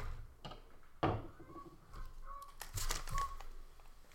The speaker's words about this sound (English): Geese sounds like you might have to get the shotguns out for dinner.